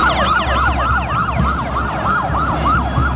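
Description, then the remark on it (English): A police motorcycle siren wails in a fast, steady yelp, rising and falling about three times a second. It's loud, with a low road rumble underneath and no talking. “I mean, I'll say we have a set of police motorcycles.”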